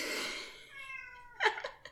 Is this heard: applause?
no